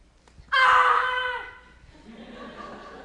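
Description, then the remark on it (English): During a birdsong quiz, a child's voice lets out a single loud, shrill screech imitating a hawk's call. The cry lasts about a second, then fades into faint background murmur. “Can you please stand up and give us the correct Hawk birdsong?”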